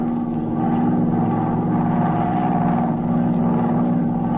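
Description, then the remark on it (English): A steady, unbroken airplane engine drone from a plane circling the city of Osborne at high altitude on a clear night hums throughout, low and even with layered harmonic tones and a faint rattle, holding constant loudness with no voices. “An hour later, her plane circled the city of Osborne at a high altitude.”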